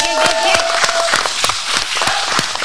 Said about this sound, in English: But to see you all here tonight is absolutely beyond anything I could have ever expected. So round of applause to y'all for showing up.